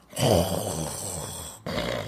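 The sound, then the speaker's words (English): A voice imitates snoring while commenting on the SmackDown Women's Championship match between Bayley and Lacey Evans: a rough, rumbling low drone that holds steady for over a second, breaks briefly, then starts again at a similar loudness. “I'm snoring a little bit here.”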